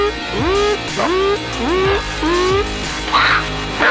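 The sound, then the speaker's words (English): A loud, harsh electronic Santa alarm, signalling that Santa is here, meant to sound like heavy metal sleigh bells: a series of rising, whooping tones repeating about twice a second, with a metallic jangle near the end and no talking. “It sounds like sleigh bells, but like heavy metal version of it.”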